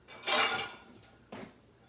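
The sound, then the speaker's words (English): A bright clatter of dishes lasting about half a second, followed by a softer second clink as a plate is taken out to serve a large egg roll. “Let me get a plate.”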